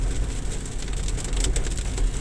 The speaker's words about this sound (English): Even though it is raining, I probably will get hit by some water in a little bit when I go inside my house.